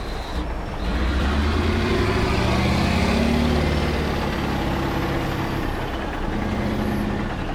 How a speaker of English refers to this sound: At the other end of the Hunter Valley lies Bulga Coal Mine. Here, giant machines rip at the black ground, while trucks three stories high cart away tons of coal. The scene is repeated 24 hours a day, 7 days a week at this open pit mine.